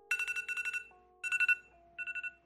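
A bright electronic phone alarm tone chirps in quick repeated bursts, three short trills separated by brief pauses, with a steady lower hum underneath and no talking.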